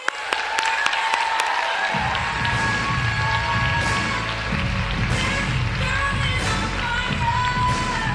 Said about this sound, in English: Please welcome them with a big round of applause.